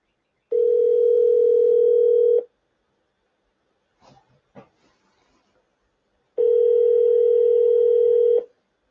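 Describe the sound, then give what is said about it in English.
A phone call to a caller rings twice, each a long steady electronic tone lasting about two seconds, with a short gap of faint clicks and rustling between them. No one speaks. “Two ringing dingies.”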